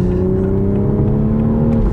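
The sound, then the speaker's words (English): A dawn blue Supra sports car engine revs hard under sustained full acceleration, a loud, steady low growl with rising harmonic tones, continuous with no talking. “Oh, I'm just giving it the beans, as you can probably tell from the audio here.”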